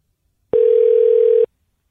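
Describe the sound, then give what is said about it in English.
A single loud, steady telephone ringing tone, heard while a call is being placed, sounds for about a second, then cuts off into silence. No voices. “Nobody want to answer their phone anymore.”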